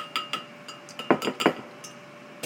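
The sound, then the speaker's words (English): A teaspoon clinks against a bowl as a teaspoon of olive oil is put into it, several times in an irregular patter, with two louder, sharper taps in the middle among lighter metallic ticks. No one speaks. “Put the teaspoon down.”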